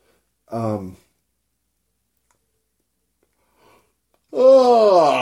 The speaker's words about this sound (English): I knew there was one more yawn in me.